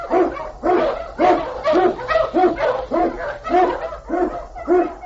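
A pack of husky sled dogs barks and yips in a steady, rhythmic chorus, about nine loud barks spread evenly over a few seconds with faint whining between them.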